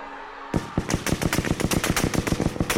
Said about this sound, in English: An SS man opened fire on the columns.